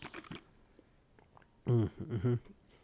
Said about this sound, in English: Hold on, let's get another sip.